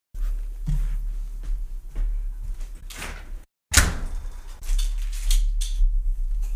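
A door is worked open, with scraping and rattling handling noises, a brief silent pause, then a sharp clunk and more sliding, shuffling movement. No one speaks.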